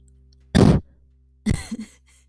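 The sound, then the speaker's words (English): Two loud coughs about a second apart, the first sharp and forceful, the second followed by a short rough throaty rasp, with quiet in between and no talking. “You know, this cough was like so satisfying.”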